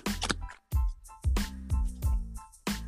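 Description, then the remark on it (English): A beginner-friendly tarot deck modelled on the Rider-Waite is shuffled before a card is pulled, with a series of about six crisp riffling bursts, each with a soft thump, separated by brief pauses. No one speaks. “But let me go ahead and shuffle real quick and pull a card.”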